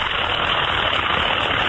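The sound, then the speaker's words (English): A steady, buzzing whir like a power drill or saw runs without a break, a dense mechanical drone at constant loudness with no voices over it. “I reckon it's a cordless drill. No, not a cordless drill.”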